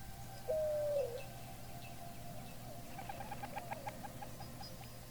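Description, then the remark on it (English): A short dove coo, then a rapid fluttering burst of wingbeats as a group of startled doves takes off, over a steady low background hum. “A group of doves, startled, burst apart with the applause of wings.”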